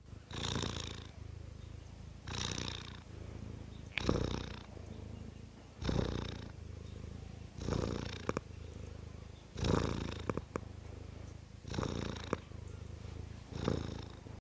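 A cat, Kitty, purrs steadily while just chilling, a low continuous rumble rising into breathy swells about every two seconds as it breathes in and out, with no talking.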